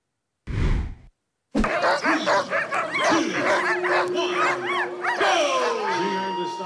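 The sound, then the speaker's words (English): A pack of sled dogs barks and yips excitedly all at once at a parade in downtown Anchorage for the ceremonial start of the 2024 Iditarod, a dense overlapping chorus of high yelps and howls, preceded by a brief burst of noise. “And it was a parade of sled dogs in downtown Anchorage today for the ceremonial start of the 2024 Iditarod.”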